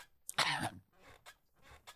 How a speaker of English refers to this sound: Oh, that did it. And now you've coughed on his face.